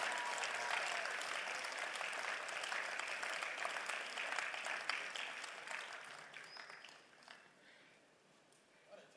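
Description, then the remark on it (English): A crowd applauds a choir steadily with dense, bright clapping that holds strong for several seconds, then thins and fades toward the end as the last scattered claps trail off. “Please clap for the choir.”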